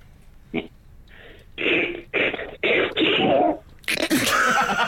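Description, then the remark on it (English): A voice imitates Donald Duck sneezing: a short nasal wind-up of squawky bursts building to a loud, raspy, explosive sneeze, alone with no talk. “Okay, and finally, I believe you can do Donald Duck sneezing.”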